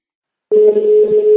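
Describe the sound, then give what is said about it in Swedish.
After a brief silence, a steady electronic telephone tone starts abruptly and holds at an even, fairly loud level to the end, with no one speaking, as a phone call is being placed. “Vi ska ringa till han som hade boktipset, Stefan.”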